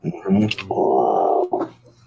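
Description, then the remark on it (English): A person imitates a lion's roar with their voice: a short grunting lead-in, then one loud, sustained, growling moan lasting under a second, ending with a brief lower grunt. “What's that one with the lion?”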